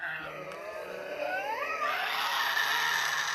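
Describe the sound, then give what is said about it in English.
Tasmanian devil joeys in tropical far north Queensland, Australia, crying: a steady stream of harsh, wavering wails with pitch that bends up and down, growing louder and shriller partway through, with no talking. “Those distinctive cries of Tasmanian devil joeys are more likely to be heard among the snow-capped peaks of the country's southernmost island state.”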